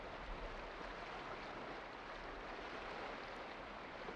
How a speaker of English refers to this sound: Take another deep breath and Take in the sounds of the water and flow into your exhale as you relax a little deeper.